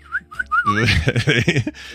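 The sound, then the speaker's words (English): A person whistles three quick, rising chirps like a bird, then breaks into a louder, rough voiced warble imitating birdsong before it fades. “News is brought to you by the birds circling over my head going...”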